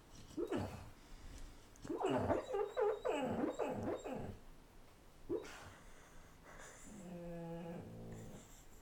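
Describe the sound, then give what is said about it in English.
A sleeping female dog lets out soft, wavering howls and whimpers in several drawn-out bursts, fairly quiet, ending in a longer, steadier howl with no talking. “She very rarely sleep howls, but it's always a delight when she does.”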